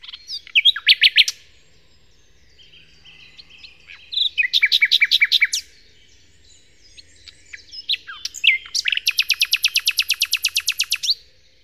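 A nightingale sings in bright, varied phrases: fast rattling bursts, piping whistled notes, and a long run of rapid repeated high chirps, with short pauses between phrases and no voices.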